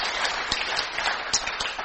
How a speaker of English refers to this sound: Yeah, give her a round of applause.